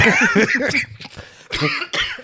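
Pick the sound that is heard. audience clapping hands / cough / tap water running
cough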